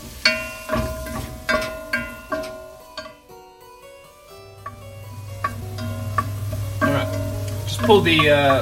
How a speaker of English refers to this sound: Pull the mushrooms out of the oven while I'm frying this onion in the butter, because I think the mushrooms are more done than the onion in the oven is done.